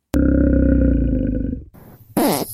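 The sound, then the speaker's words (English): A grizzly bear lets out a deep, loud, rumbling roar that starts abruptly and holds for about a second and a half, then breaks into rougher, noisy grunting bursts. No one speaks. “We'll be back next week when I get out from under this horrible farting grizzly.”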